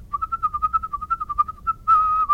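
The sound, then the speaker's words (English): A person whistles a quick, bouncy melody of short staccato notes, ending on a longer sustained tone, clear with no talking. “I am wanting to be the whistler who changes the image of whistling.”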